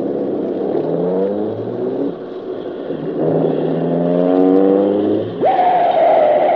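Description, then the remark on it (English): A car engine is started, then revs up and accelerates, its pitch climbing in repeated surges before shifting to a higher, steady whine. The sound is loud, with no voices. “Now start the car. We've got to take a chance and pull in front of them.”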